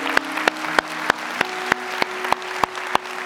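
A church audience claps together in celebration after a prayer, in a steady, even rhythm, about ten sharp claps at roughly three per second, over a low sustained musical hum with no voices.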